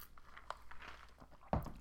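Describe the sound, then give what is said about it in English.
Someone takes a sip of a drink: quiet handling noises and a small click, then a brief, louder slurping gulp near the end, with no talking. “Let me take a sip.”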